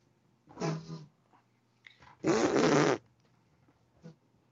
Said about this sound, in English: My chair farted.